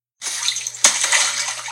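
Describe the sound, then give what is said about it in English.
A big water splash bursts in as someone slides on their knees along a tarp, with a sharp crash of water partway through, then churning, sloshing water fills the rest of the short clip, loud, with no voices. “At the last second, he dropped to his knees and zoomed to the end, making a giant splash.”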